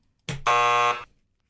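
A quiz game buzzer, pressed by a contestant during a song-guessing round, sounds: a brief burst, then a loud, harsh, steady electronic buzz lasting just over half a second before cutting off. No voices are heard.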